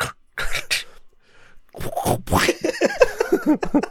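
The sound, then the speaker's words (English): A voice imitates a deck of playing cards being shuffled, using wet, sputtering mouth noises: a few short bursts, a brief pause, then a longer run of rapid, fluttering sounds. “We're going to shuffle our cards and make sure our decks are in order. That's the sound it makes.”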